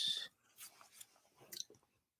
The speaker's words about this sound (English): I actually got to finish my breakfast real quick.